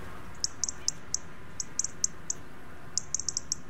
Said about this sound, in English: While European robins in cities sing more at night when there's less of a din. Urban noise drowns out the nuances of a competitor's song, compromising a robin's judgment of potential rivals.